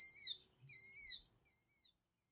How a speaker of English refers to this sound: Like a killdeer. That's what I was expecting.